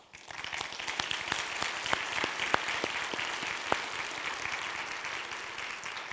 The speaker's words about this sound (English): Just a few things before we get started this morning. Thing one, can we in gratefulness give a round of applause for our pastor?